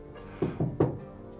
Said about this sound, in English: Is there a window in the door or? Nope. Can I knock? Yeah.